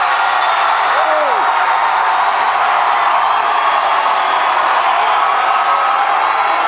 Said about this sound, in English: Definitely the loudest of the crowds we've heard tonight between Cruz, Rubio, and Clinton. 30. All right, while they chant and shout and feel the burn